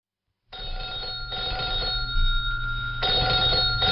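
An old-fashioned telephone bell rings in repeated loud bursts in a kitchen in the radio drama Lizzie Waldron's Day Return, with brief pauses between the trills and a low background hum underneath.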